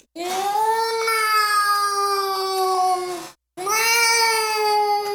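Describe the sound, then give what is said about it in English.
A person imitates the drawn-out, cat-like wail that creatures make when their egg sacs are hatching: one long, strained cry of about three seconds, a brief pause, then a second cry, loud and harmonically rich with a slightly wavering pitch. “You sound like a dying cat.”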